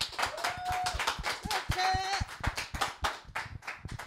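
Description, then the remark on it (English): An audience claps loudly and steadily for about four seconds for a guest, a dense patter of many hands, with a few brief cheering voices rising above the applause. “Y'all give it up for my partner,”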